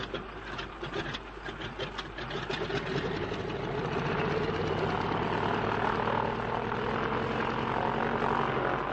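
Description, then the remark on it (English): Stone-cold aircraft engines rev up from a rough, sputtering start into a steady, loud propeller drone, the pitch climbing and holding, with no voices. “And if only your engines don't seize, they're stone cold, Bertie. I can't help that old trout. Don't waste time revving.”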